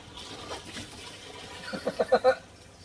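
Water sloshes and laps steadily against the sides of a hot tub, building toward the end into a few louder, rhythmic splashes. Nobody speaks.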